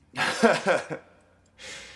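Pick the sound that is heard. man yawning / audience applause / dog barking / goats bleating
man yawning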